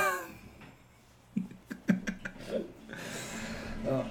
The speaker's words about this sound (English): And there's the toilet. And there's the flush.